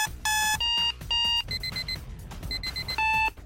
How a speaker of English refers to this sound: Okay, that's an alarm clock. That's an alarm clock. That is not the drum roll.